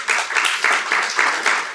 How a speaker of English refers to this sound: How many people use Blend? Clap if you use Blend.